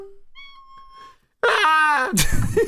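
A pet cat, Fluffy, meows twice, first a thin, moderate cry, then after a short pause a much louder, drawn-out meow that ends in a rough, breathy rasp. No one speaks.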